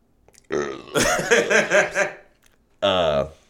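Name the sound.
belch into the microphone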